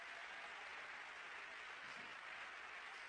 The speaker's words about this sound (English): Somebody clap your hands and praise the Lord.